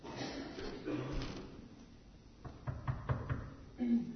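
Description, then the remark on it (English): A servant knocks on the door of a humble house: several quick raps, about five knocks in an uneven burst, moderately loud against a quiet, murmuring background. “Go knock at the door and ask if a baby dwells within.”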